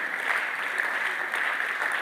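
A crowd applauds steadily, a dense wash of many hands clapping at once with an even, sustained loudness and no voices standing out.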